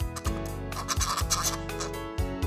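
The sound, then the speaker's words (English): A monkey call: loud, raspy chattering in a quick run of bursts with a buzzy, harmonic tone, and no voices. “Yes, that's right. It's a monkey.”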